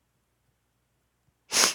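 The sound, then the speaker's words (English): A single sharp sneeze bursts out after a second and a half of near silence, loud, with a bright hissy spray of breath that cuts off quickly. “Excuse me, sniffles.”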